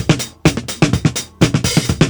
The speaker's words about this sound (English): if I take the multi-track and isolate some of the drums, This is what they sound like.